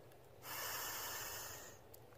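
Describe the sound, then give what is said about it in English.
A single deep inhale through the nose during a guided breathing exercise, an airy hiss that swells and holds for just over a second before fading, with no talking around it. “And then what I want you to do is everything you're feeling, okay, breathing deep.”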